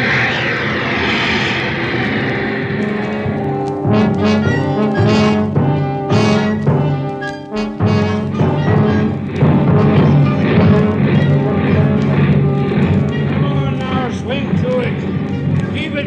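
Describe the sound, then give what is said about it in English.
Heavy ship engine-room machinery drones loudly and steadily throughout, a dense mechanical roar with a throbbing hum underneath, while voices talk over it at times. “Now there's the lads that's got it tough. The ones down there in the engine room.”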